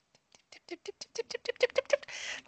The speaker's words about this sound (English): I can hear tiny footsteps outside my door.